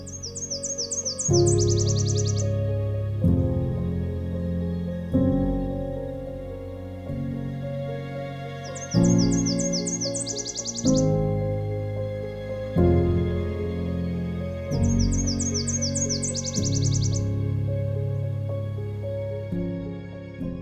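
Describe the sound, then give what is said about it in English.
Black-throated green warblers, a winter wren and Nashville warblers sing in a jack pine alvar: a bright, high song phrase rings out three times at regular intervals, each a quick run of sweet notes, layered over a steady, loud, low musical backdrop. “I'm continuing through the jackpine alvar on my return walk back to the road, where black-throated green warblers, winter wren, and Nashville warblers are abundant in song.”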